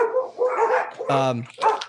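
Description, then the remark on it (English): A dog barks and yips repeatedly at an arriving mail carrier in short, sharp bursts, fairly loud, with a brief whine mixed in. “I think the mailman has arrived. I guess dogs still hate mailmen, huh?”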